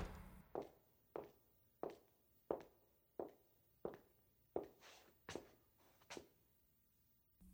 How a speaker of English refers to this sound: I'd hear the door shut, followed by footsteps.